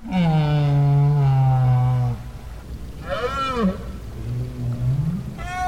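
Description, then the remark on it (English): Right whale calls recorded underwater in the Bay of Fundy, where Maine meets Canada: a long, loud low moan, then quieter rising and sweeping tonal whoops and upcalls over a hissing, murky background. “Fifty years later, Parks made another recording of right whales at the Bay of Fundy, where Maine meets Canada.”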